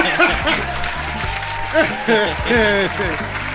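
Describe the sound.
Steady applause with a dense patter of many claps, running the whole time beneath several overlapping voices that talk and exclaim loudly over it.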